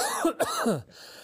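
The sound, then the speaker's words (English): A voice makes a short run of hacking, cough-like bursts with rough, strained throat sounds, loud, as if coughing up a condom, then quiet. “He just coughs up a condom.”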